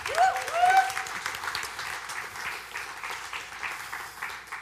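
A church audience on a Sunday morning claps steadily for several seconds to welcome people to the stage. It is a dense, even patter of many hands, with a brief rising whistle or cheer near the start.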